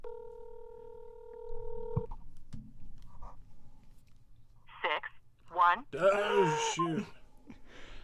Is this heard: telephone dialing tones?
yes